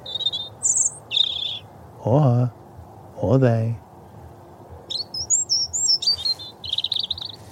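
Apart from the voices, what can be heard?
european robin singing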